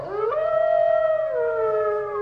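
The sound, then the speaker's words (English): A single long wolf howl rises quickly, then holds a steady, drawn-out tone before sliding lower, loud with no voices over it. “Hy het so irriterende toonhoogte in die wolf.”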